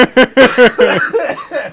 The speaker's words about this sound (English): You're totally going to cough, innit?